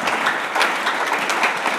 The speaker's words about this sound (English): If you are not clapping, you are not in the church. I said, if you are not clapping, you are not just in the church.